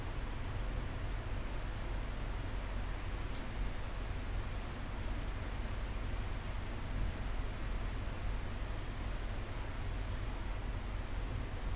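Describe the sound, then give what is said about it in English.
Steady rain falls without pause, a dense, even hiss spread across low and high pitches with a soft rumble underneath, constant in loudness throughout and with no voices. “You can lie down on the floor and soften the whole body while listening to the rain with me.”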